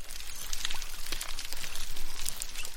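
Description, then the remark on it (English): Underwater recording in parts of the Indian and Pacific Oceans: snapping prawns make a dense, steady crackle of sharp clicks and pops, with scattered munching and squeaky sounds from dugongs mixed in, and no voices. “If you were to stick a microphone into the water in some parts of the Indian and Pacific Oceans, alongside the snapping sounds of prawns, you might hear some munching and squeaking noises.”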